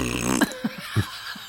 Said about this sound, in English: If he burped his answer... then maybe okay.